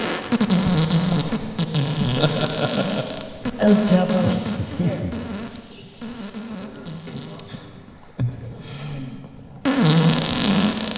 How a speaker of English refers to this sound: You have GarageBand. Everybody has GarageBand, and you can fart in there, and you can sample it, and just be like.